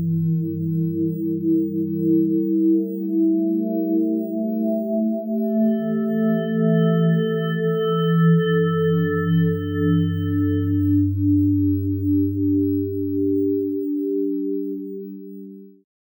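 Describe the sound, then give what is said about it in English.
Layered, steady electronic feedback tones hum at a constant loudness, with a thin high-pitched whine joining midway before the low drones fade out at the end. No one speaks. “Static feedback.”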